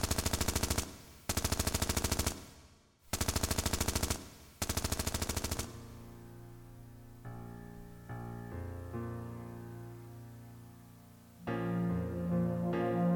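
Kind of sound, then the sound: sound effect, gunfire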